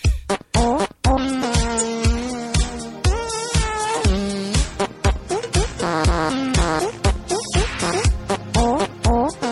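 A song tune played with buzzy, rubbery fart noises for a guess-the-fart-song game: a run of pitched blats rising and falling in melody over a steady thumping beat, loud and continuous with no talking.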